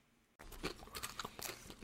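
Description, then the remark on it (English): Loud crunching as something crisp is bitten into and chewed, with a burst of sharp, crackly bites in quick irregular succession after a brief quiet start. “I got a hunch that you're in for a crunch.”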